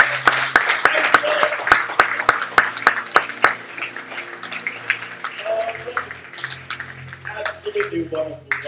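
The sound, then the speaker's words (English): A large group claps loudly for the Lord during a celebration glorifying God, first in sharp, fairly regular strokes, then into looser, continuous applause with voices calling out and chattering underneath. “Let's give the Lord a big clap.”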